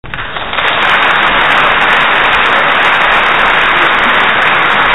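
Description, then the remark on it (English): A toilet flush sound effect: a loud rushing whoosh of water that swells within the first half second, then pours on steadily and evenly for several seconds, with no voices. “Okay, you need to be on the ball with that flush button when people start saying stuff like that.”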